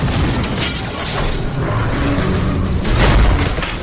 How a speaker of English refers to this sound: And where it goes this time is they're going to crash that car.